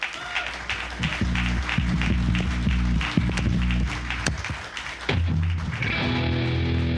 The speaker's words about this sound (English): Guys, let's bring them out to a warm round of applause.